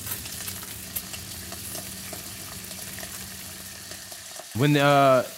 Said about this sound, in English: When you put the fish in the pan and you have applied the pressure and there's plenty of oil underneath it, you really don't want to move the fish around a lot.